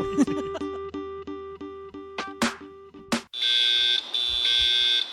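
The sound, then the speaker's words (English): An electronic alarm, set to go off if Ricky Ponting got out in his last match, sounds: first a rapid train of evenly spaced beeping tones, then, after a sharp click, a loud, continuous shrill buzzing ring. “I had this alarm set in case Ricky Ponting goes out in his last match and he has.”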